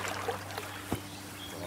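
A creek trickles steadily, a soft continuous wash of running water with a few faint clicks and taps scattered through it.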